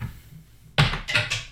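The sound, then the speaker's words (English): A die thrown at a dice tray misses entirely and strikes a chair with a sharp clack, then bounces twice more with quieter, quick knocks before settling. No one speaks. “We have a little dice thing for this round of the game, and I was trying to throw my die at it, and missed entirely. Just threw it into a chair.”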